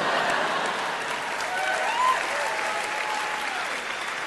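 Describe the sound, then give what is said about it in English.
A crowd applauds steadily throughout, a dense wash of many hands clapping at an even loudness, with faint tones from a brief voice or cheer rising partway through. “And that was Massachusetts, and we applaud it.”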